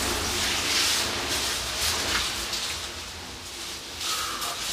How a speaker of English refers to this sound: You can hear water, so it must connect out to the ocean.